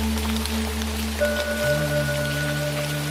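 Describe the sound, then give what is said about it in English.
Food sizzles in a fryer with a dense, steady crackle of tiny pops for the whole stretch, over a low constant electrical hum with a faint whine added partway through. No one speaks. “All it takes is the sound of frying.”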